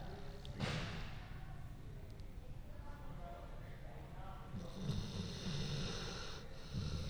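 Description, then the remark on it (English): A dog snores, slow, deep, rumbling breaths with a sharper snorting rasp near the start and a hissier exhale toward the end. “That was definitely some snoring.”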